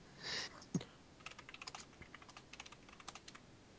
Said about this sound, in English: And he's typing. That's typing. We can hear the typing.